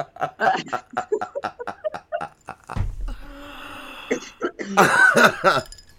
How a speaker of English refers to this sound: Got a cough to get off. Yeah. That's what makes things magic. Okay. But that was a solid hoot, though, so I'm going to be feeling that for a minute.